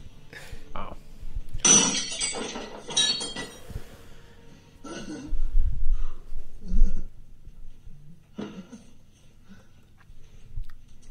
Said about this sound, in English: So what, he breaks a plate every time he loses? He lost.